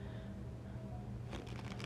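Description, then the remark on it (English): Tarot cards being shuffled, a steady low rustle that breaks into quicker riffling flutters near the end, with no one speaking. “Just a few more shuffles and just concentrating on the cards for a second.”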